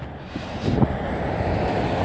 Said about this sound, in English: Fuck, the cops. The cops are here. There's a cop truck coming by.